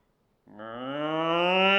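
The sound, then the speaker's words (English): After a moment of silence, a person imitates a cow with one long, drawn-out moo that starts abruptly and swells steadily louder. “Well, we were mentioning cows last hour momentarily.”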